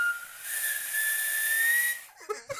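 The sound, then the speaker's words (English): A voice imitates a vacuum cleaner, sounding like a Hoover: a steady, slightly rising whistle over loud breathy hiss for about two seconds, then a few short puffs of breath. “Oh my God, that sounds like a Hoover.”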